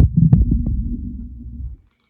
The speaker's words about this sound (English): Can you guys hear the purring? He's like a machine.